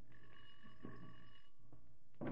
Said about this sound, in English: Ring the bell